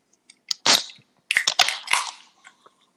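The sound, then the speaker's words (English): LaCroix sparkling water cans being cracked open, with sharp metallic snaps of the tabs each followed by a brief fizzy hiss, two openings in quick succession and no talking. “Let's go ahead and raise our toast, crack the LaCroix, and take our first sip.”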